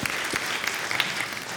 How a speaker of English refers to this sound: I want to applaud you, and everybody else can too.